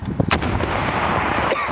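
A Carl Gustav shoulder-fired recoilless rifle, fired by Navy SEALs on active duty, goes off with a single sharp, booming blast, followed by a loud, sustained roaring rumble that lingers and fades unevenly.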